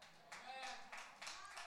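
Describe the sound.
A group claps together in a steady rhythm, about five quick even beats in under two seconds, with a faint murmur of voices underneath.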